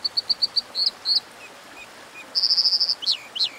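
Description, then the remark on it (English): An American dipper, a small riverside bird, calls by a river over a steady rushing background: a quick series of sharp, high chirps, then a rapid buzzy trill and a few rising whistled notes, clear. “As the river ran free again, salmon from the Pacific were able to spawn upstream for the first time in 100 years, having a dramatic impact on American dippers, lively little riverside birds.”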